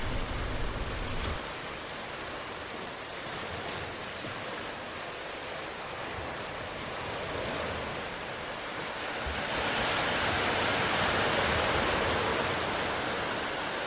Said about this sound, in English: Listen to the rhythm of the waves flow over the sand and let it relax you.